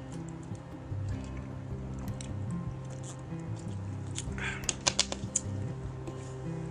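A person takes a quick water break: a few wet sips and gulps of water click and squish, standing out over a steady low background hum, with no talking.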